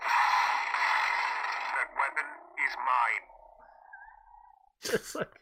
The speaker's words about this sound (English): I'm going to hit the button. Check this out. This is the button, the Kylo Ren toothbrush.